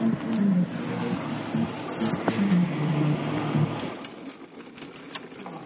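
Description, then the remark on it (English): A car engine, just started, runs with a steady low rumble and hum for a few seconds, then settles quieter, with a sharp click near the end and no talking. “Okay, I just started the car.”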